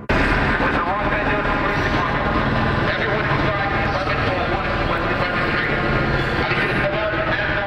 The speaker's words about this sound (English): The LAPD helicopter telling those individuals to get out.